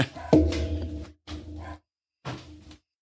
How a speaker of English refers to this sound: I mean, hold on. There's my dog's howling. Must be an Amazon fucking delivery.